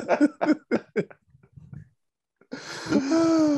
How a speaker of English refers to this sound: for our young followers, that's to blow his nose, okay? It's just to blow his nose.